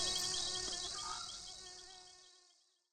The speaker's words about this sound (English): I got settled, threw the mosquito net over me, and listened to the wildlife call as the darkness overcame the swamp. The frogs, the distant reptilian hissing, crickets chirping, and of course the buzzing of mosquitoes.